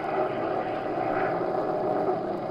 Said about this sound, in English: The weather was awful. The little plane rocked, rolled, and practically stood still in midair.